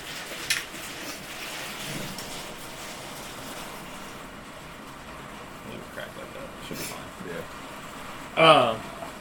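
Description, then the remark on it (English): Heavy rain splashes steadily outside the house, a continuous broad hiss at moderate loudness, with a brief high-pitched voice-like sound rising near the end. “here comes that rain again.”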